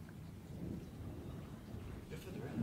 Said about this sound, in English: Lightning striking in the middle of this, like, there's a storm going on.